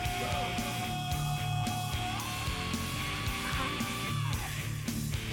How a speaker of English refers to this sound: Here's that scream.